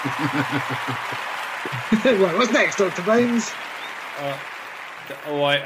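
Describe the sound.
A round of applause sound effect, a steady wash of clapping that runs throughout at moderate volume while a man talks over it.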